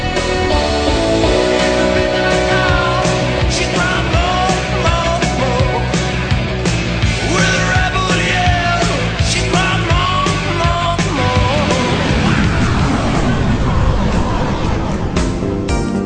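A synthetic MIDI-style instrumental version of a rock song plays loudly and continuously, with a driving beat, bright synth lines and dense chords that thicken toward the end, with no singing.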